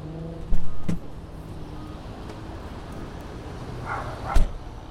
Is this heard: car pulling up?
yes